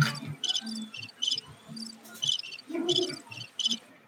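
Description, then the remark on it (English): Crickets chirp steadily in short, bright pulsed bursts, repeating every half second or so, clear over a low background rumble, with no one talking. “Straight crickets.”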